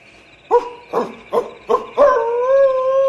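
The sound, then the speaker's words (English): A wolf lets out four quick, sharp yips in a steady rhythm, then breaks into a long, sustained howl that holds its pitch. Loud, with no voices. “The wolf's going to attack.”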